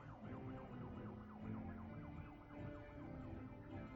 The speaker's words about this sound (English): and you see it going down like this tunnel, and it's just the lights and like the ambulance sirens playing, like such a well crafted and edited sequence.